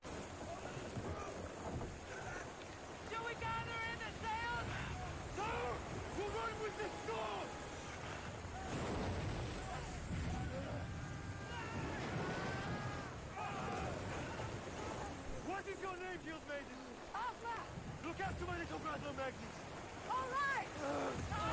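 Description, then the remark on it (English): A storm at sea, with heavy wind roaring and waves pounding against a boat in a constant loud wash, while voices talk and call out over the noise throughout. “it's on the boat first. We go to … dealing with a perfect storm here”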